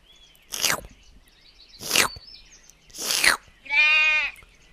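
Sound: goat bleating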